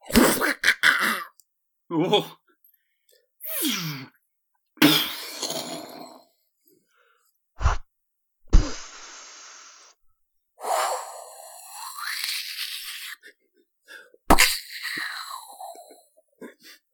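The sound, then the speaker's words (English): Several voices take turns imitating explosions, to be layered on top of one another: a string of short, breathy bursts of hissing noise, some sharp and clipped, others swelling and fading over a second or two, separated by brief silences. “Can everyone do an explosion sound and then you can layer it on top?”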